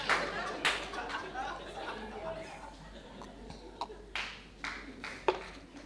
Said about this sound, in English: The married ones are clapping.